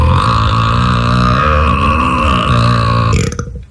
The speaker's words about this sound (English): the unbelievable burp that … belches is real